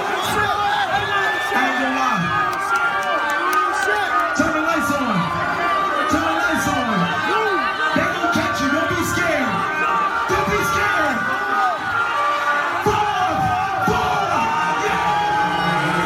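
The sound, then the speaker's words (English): A large concert crowd cheers and celebrates, dancing around after a man jumps from a balcony into the crowd, with many overlapping voices, shouts and rising whoops blending into a steady, loud roar that holds for the whole stretch. “Everybody's dancing around. They're celebrating.”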